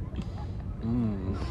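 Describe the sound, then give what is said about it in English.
A boat engine runs steadily, a constant low rumble with a droning tone rising over it in the second half, and faint voices underneath. “Wow, we love the gas from this boat.”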